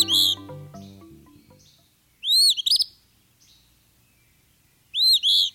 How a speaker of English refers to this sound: This brisk whistle belongs to a bird named for its song, the Eastern Phoebe. It repeats its name each time it sings, so it's a pretty straightforward voice to identify and remember.